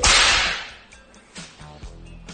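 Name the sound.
whip crack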